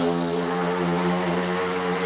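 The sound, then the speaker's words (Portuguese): A motorcycle passing by a house drones steadily, a loud buzzing hum with a strong low pitch that holds even for a couple of seconds, with no one speaking over it. “se você quiser mais conteúdo para estudar inglês e menos motos passando na sua casa.”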